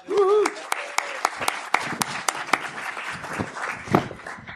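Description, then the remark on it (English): An audience applauds steadily, with many overlapping claps and a few sharper individual ones standing out. A short vocal whoop rises at the very start. “Hey, everybody applaud this guy.”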